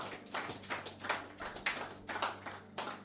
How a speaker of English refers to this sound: Hallelujah. Give the Lord a clap of an amen.